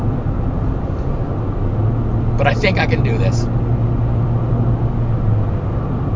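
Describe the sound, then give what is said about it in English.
A car engine with four ignition coils idles roughly with an uneven, misfiring rumble from a faulty ignition coil and a steady low hum, while a man speaks briefly over the noise. “If you disconnect it and it doesn't sound worse, that means that's the coil that's not working.”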